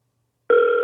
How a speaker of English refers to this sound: Oh, I see Chris from Florida's calling. Let's see if I can call him.